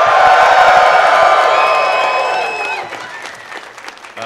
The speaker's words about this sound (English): One more big yell from the crowd who is here and in charge. Go, give it to me loud.